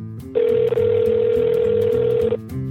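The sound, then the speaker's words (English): A single steady telephone ringing tone on an outgoing call to the Vatican switchboard, a clear, loud hum lasting about two seconds over a narrow phone line, with faint low background sound beneath it. “When I phone the Vatican switchboard again, the operator directs me to the Secretary General of the Diocese of Rome.”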